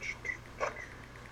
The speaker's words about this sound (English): Sorry, I'm just hearing weird sounds in the walls. It's the dog!